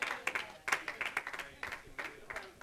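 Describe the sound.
A church audience claps in scattered, uneven bursts of sharp hand claps, moderately loud, with murmuring voices and calls mixed in underneath.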